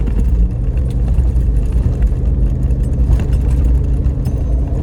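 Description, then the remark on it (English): A V8 pickup truck's engine rumbles steadily as it drives off-road on a desert trail in four-wheel drive high, with heavy low-end drone and faint rattles and clinks over rough ground, no voices present. “We can see this truck being a lot of fun for trail work, or for those of you who enjoy blasting through the desert on roads like these.”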